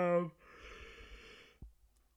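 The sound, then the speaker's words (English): A big yawn: a short voiced groan at the start stretching into a long, breathy exhale, ending with a small mouth click. “Big yawn. We're not editing that out.”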